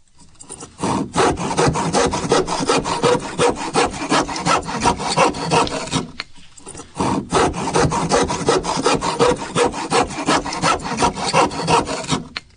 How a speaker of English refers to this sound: The first one is a handsaw.